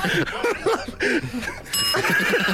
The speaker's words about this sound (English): God, we've got so many suggestions for the Daily Podcast name. We're ringing that bell left, right, and centre, aren't we?